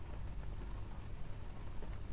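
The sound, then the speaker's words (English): Steady, dense rain patters without a break, a soft continuous wash of drops with a low rumble underneath, and no voices. “In the rain. Making an MSMR video.”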